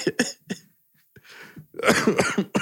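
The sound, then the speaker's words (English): A fit of harsh, violent coughing from a lingering cough that began about a month ago: a few sharp hacks, a short pause with a rasping breath, then a dense burst of rapid, loud coughs. “I'm sorry for the violent coughing. It was very violent.”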